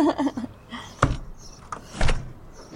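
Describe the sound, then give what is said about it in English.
A solid wood front door of a house in a leafy summer neighborhood of Telluride opens with a sharp latch clunk, followed a second later by a heavier thud as it swings. Muffled voices murmur briefly just before. “… now greets me at her front door in one of Telluride's leafy summer neighborhoods.”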